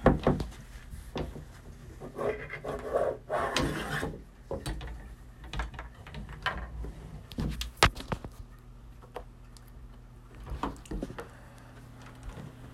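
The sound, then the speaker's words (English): An office door is opened: a wooden creak and mechanical latch clicks, a scraping rub around the third second, then scattered knocks and clatters against a steady low hum. “The office door is open.”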